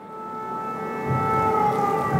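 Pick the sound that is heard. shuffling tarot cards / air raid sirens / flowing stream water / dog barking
air raid sirens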